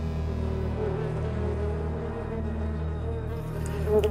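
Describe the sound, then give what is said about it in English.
A dense, droning swarm of agitated bees buzzes around a hive in a room, loud, holding a steady layered hum from start to finish with no voices. “Yes, though you also notice the bees don't seem happy about your presence.”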